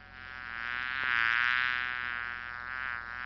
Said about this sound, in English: Mighty annoying, isn't it? Very, very annoying. That buzzing sound was something that we really just couldn't put you through.